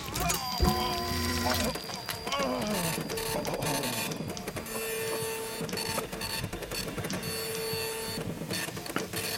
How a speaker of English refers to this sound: Would you listen to that? A self-piloting typewriter. An unexpected development indeed.